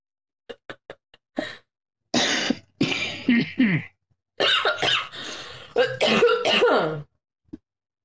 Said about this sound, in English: I have to cough, but I know y'all are gonna fucking hear it, and I don't want to.